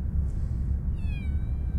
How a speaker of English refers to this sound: And we have two kittens here who happen to be Pippi and Gabbro's cousins. Albeit, they're quite a bit younger. Because these two guys are about 3 months old, one boy, one girl, as far as we know.